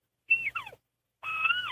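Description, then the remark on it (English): A coyote pup call blown on a 4K9 pup game call, also used for calling elk: a short high yip that breaks and slides downward, then after a pause a longer, steady high wail that falls off in pitch at the end. “And we make this little 4K9 pup. It's great for calling elk.”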